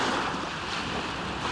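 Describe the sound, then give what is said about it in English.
Waves wash steadily onto the shore of the Sea of Galilee, a continuous rushing hiss with a little wind noise against the microphone and no voices. “God bless you from the shores of the Sea of Galilee.”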